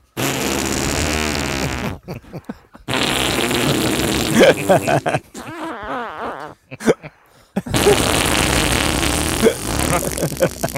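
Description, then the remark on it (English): A voice imitates the wet, sputtering sound of diarrhea on the toilet in several long bursts, buzzing and gurgling with wavering pitch, broken by short silent pauses between the loud blasts. “Sit on the toilet, and it sounded like this.”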